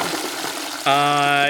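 A toilet flushes with a rushing, hissing wash of water, then a steady droning, whining tone cuts in abruptly and holds loudly to the end.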